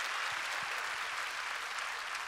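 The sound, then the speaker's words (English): An audience claps hands in praise to the Lord, a dense, steady wash of applause, many overlapping claps blending into continuous crackling noise at an even loudness. “Come on, clap your hands and give praise to the Lord.”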